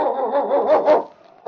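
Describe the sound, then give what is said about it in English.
Yukon King, a husky sled lead dog of the Northwest, barks and yelps in a loud, steady run of calls lasting over a second, then breaks off briefly before another bark starts. “It's Yukon King, swiftest and strongest lead dog of the Northwest, blazing the trail for Sergeant Preston of the Northwest Mounted Police in his relentless pursuit of lawbreakers.”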